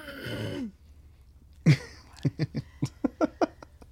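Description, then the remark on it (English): A person coughs: after a breathy rasp, one sharp hack is followed by a quick, uneven string of about eight shorter coughs, with no talking. “Cough it out. You gotta cough it out.”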